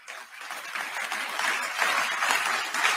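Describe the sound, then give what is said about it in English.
A crowd at a rally bursts into sustained applause, a dense steady clatter of many hands clapping that holds fairly level and swells slightly toward the end, with no speech over it. “I can't believe he gets an applause line there.”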